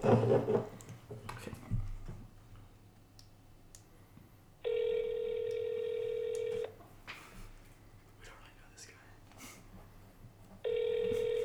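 An outgoing phone call rings out: a steady electronic ringback tone sounds for about two seconds, pauses in near silence, then starts again, heard clearly through a handset or speaker.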